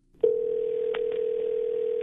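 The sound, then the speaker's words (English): A steady electronic telephone tone starts abruptly and holds at an even pitch and loudness, with a couple of faint clicks partway through, as a call is placed over the line to a caller's mother. No one speaks. “Let's get her mom, Beth, on the phone here.”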